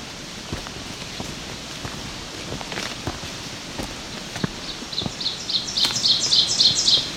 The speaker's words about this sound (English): This is nice and clean. So, oven bird, type of warbler. Teacher, teacher, teacher is the type of mnemonic it has.